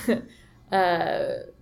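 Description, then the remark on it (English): A single loud sneeze: a quick sharp intake followed by a bursting, voiced 'achoo' that trails off after under a second, with no talking around it. “Bless you.”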